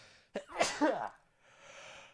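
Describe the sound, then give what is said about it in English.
A single sneeze bursts out sharply with a brief voiced catch, followed by quiet breathy noise. Nobody speaks. “I did sneeze.”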